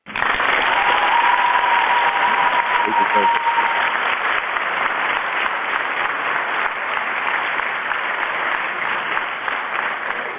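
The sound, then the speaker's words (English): Sustained applause given for Rosemary's Restaurant in Las Vegas, dense steady clapping that stays loud and even for about ten seconds, with a faint whistle-like tone early on. “In fact, I'm going to give an applause just for that one.”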